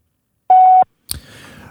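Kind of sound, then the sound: signal or alarm, voicemail beep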